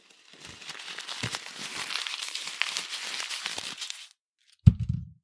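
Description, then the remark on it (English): Steady crinkling and crackling of paper being crumpled for about four seconds, then a short pause and a soft low thump as it is thrown into the trash. “That's me crumpling paper and throwing it in the trash.”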